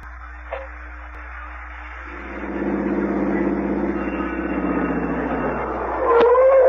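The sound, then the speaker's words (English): A car engine idles with a low steady hum, then revs up into a louder rumbling drone that slowly winds back down, with a brief sharp knock near the end. “Is this the car? It's not bad. This is it.”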